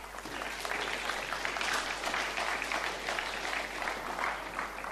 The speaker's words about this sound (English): Hey, I think it's a good job to thank people when they do such a good effort. Round of applause for the team that put that together.